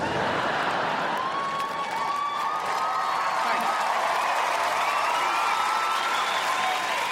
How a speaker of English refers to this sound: That is sweet of you. Don't feel obliged to applaud, though.